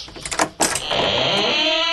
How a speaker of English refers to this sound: Hey, Mr. Fix-It. Can't help but notice the door's still squeaking.